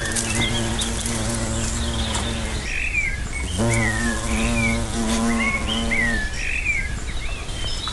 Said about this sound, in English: That close to a hornet, you wouldn't believe. The cord is now about 8 inches away from this hornet. It's feeding on the cotoneaster. And it's just building its nest about 10 yards away from where we are.